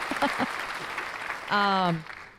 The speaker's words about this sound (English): Now I hit the applause button.